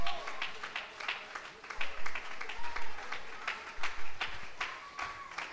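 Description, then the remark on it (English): A crowd claps hands to the Lord in a steady burst of applause, sharp overlapping claps with some louder beats standing out, while scattered voices and cheers rise faintly underneath. “Could you clap your hands to the Lord tonight?”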